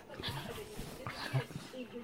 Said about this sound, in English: Swearing bird, language warning. Angry Eric the cockatoo curses at his dog friend.